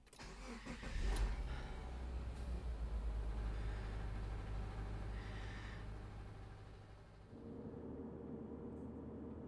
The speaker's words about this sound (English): Oh well, at least my car is running fine. I'll just head home and figure it out from there.